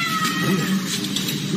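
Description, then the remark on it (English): A kitten named Dodge, rescued by Indiana state troopers from the engine compartment of a patrol car, meows in high, thin, strained cries that run together almost without pause for a second and a half, fairly loud over a steady background hiss, with no talking. “Indiana state troopers rescued a kitten that climbed into the engine compartment of a patrol vehicle.”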